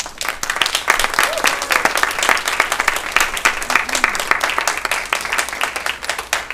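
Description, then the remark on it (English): A crowd gives a round of applause to the whole staff, many hands clapping in a dense, crackling wash that stays steady and loud throughout, with a few brief murmurs of voices underneath. “So I'd also like everyone to give a round of applause to the whole staff.”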